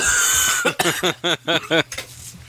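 A person makes a quick run of five short, voiced coughs in a steady rhythm, fairly loud, as if imitating a coughing fit, with no other talking.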